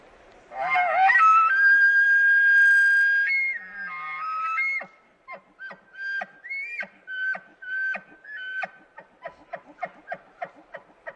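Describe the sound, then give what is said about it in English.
An imitated bull elk bugle: a rising, high, wavering whistle held for a few seconds, then a string of about a dozen sharp, rhythmic chuckling grunts that grow shorter toward the end. “We can just move your mic, and then, yeah, let's hear your bull call there.”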